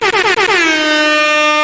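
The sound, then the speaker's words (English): A loud air horn fires a quick run of four short stuttering blasts, then holds one long, steady, blaring note to the end, with nothing else audible around it. “Throw some air horns for Quentin Brunson, yo.”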